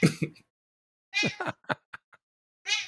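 A cat gives several short, squeaky little chirps, spaced out by brief pauses, with nobody talking.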